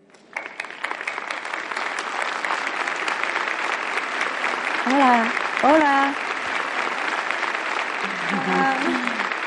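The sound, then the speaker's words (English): Steady, dense applause from an audience in Xalapa City welcoming Supreme Master Ching Hai as guest of honor. A loud, continuous patter of many hands fills the whole stretch, while a few voices call out greetings over it. “Let's welcome Supreme Master with a warm round of applause.”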